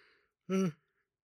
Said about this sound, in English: Excuse me. Hey, the yawn's back.